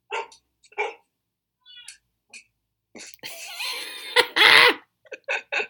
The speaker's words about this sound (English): We're super professional. Super professional. We have dogs in the podcast booth, that's all. We're just hip and trendy.